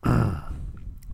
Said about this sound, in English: I'll try to stop burping on the mic. Probably never will. If you've been listening to this show for a while, you've noticed many of them. And I'm sorry, I try to stop